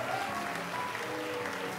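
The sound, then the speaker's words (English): A church audience applauds with a steady, dense wash of hand claps, broad and crackling without pause, celebrating baptismal candidates, filling the whole moment with no clear voices on top. “Come on and give God one big, great, big hand clap again. Let's celebrate our baptismal candidates as they went down in the water.”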